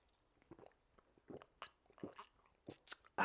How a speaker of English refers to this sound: Sip of water real quick.